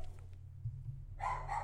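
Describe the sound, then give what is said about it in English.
A dog lets out a short bark toward the end, following a stretch of low, steady background hum with no one talking. “Dog does not want me to talk today.”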